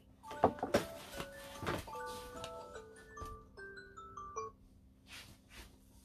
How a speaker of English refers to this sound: So as all this is happening, I'm trying to figure out, my alarm is ringing. Hold on.